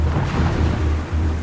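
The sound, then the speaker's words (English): A huge thunderstorm over Sicily roars steadily, with a deep continuous rumble beneath a dense wash of wind and rain noise. It is loud, with no voices. “But the Allies think, maybe they won't expect us to attack in the middle of this huge storm.”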